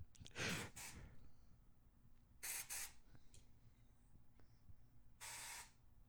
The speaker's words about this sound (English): Easy to use, quickly controls minor bleeding, spray at any angle.